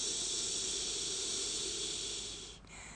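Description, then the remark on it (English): A person imitates a snake with one long, steady, breathy hiss, holding for nearly three seconds before it briefly cuts off and trails back in more softly. “Like, I started talking and everything I was saying, like, it sounded like I was a fucking snake.”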